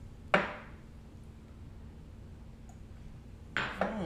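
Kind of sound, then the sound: household object, glasses clinking together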